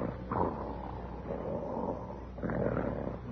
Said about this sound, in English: Hey, listen, but I didn't know there was a sawmill on the premises. Snoring. There's only one man I ever heard snore like that. It can't be him.